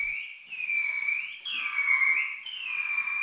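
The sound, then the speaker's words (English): A bottlenose dolphin, its head in a floating plastic helmet during an experiment, makes its normal whistling call for a trainer in a steady, high-pitched stream, its tone sweeping down and back up in three rising-and-falling contours, with bright harmonics and no voices. “In the experiment, the dolphin swims into this funny little floating plastic helmet-looking thing that's positioned over its head, and then the trainer asks it to make its normal whistling call for 2 minutes for a fishy reward.”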